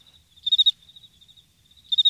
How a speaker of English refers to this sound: Yeah, some crickets in post.